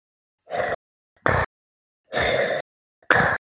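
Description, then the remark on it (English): A voice imitates heavy, mechanical respirator breathing: two slow cycles of a long rasping inhale followed by a sharper exhale, fairly loud, with brief silences between breaths. “The breathing was a bit...”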